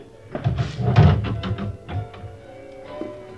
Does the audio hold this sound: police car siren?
no